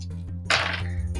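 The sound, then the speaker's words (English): A short burst of clattering as dice tumble and spill out of a home-built dice tower, a bright rattling rush lasting under half a second over a steady low hum, with no one talking. “I got to ruin my dice tower I built.”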